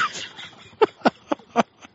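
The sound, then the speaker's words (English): A person imitates an egret's squawk with four short, harsh squawks in a quick, fairly even sequence, preceded by a brief stretch of quiet murmuring. “It's just a squawk.”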